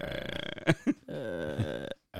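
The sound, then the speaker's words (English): A voice imitates the farty, buzzing tone of a guitar fuzz effects pedal known as the fart box: a couple of short raspy blurts, then a long sustained buzzy drone, fairly loud, cutting off and briefly starting again. “Yes, it's like, remember that guitar, the effects pedal, that was like a fart sound?”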